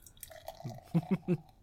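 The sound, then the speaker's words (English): Crystal clear, light straw-colored craft beer with a white foamy head glugs as it's poured into a glass, with three quick, rounded liquid gulps, preceded by a soft trickle and faint fizz, quiet overall and with no talking. “And he requested he requested The Pour.”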